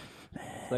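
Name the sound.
imitated heavy breathing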